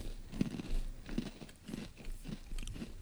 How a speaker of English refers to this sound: We just hear ourselves chewing. All right, this cookie is pretty good.